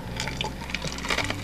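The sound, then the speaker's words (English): Crunchy, irregular cracking and crushing of ice being chewed, a quick series of sharp brittle crackles over about a second and a half, with no talking. “Sorry, I'm chewing on ice now.”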